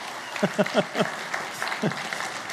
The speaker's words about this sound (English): Sorry, I didn't mean to cut the clap short. Can we clap for one more time?